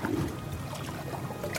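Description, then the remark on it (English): A steady, murky engine drone from small whale-watching boats, recorded underwater with hydrophones, with a constant low rumble and watery hiss running evenly throughout, and no voices. “We're also surrounded by small whale-watching boats, so it may be something there, but this frequency seems way below any of the engine noise that we've been hearing.”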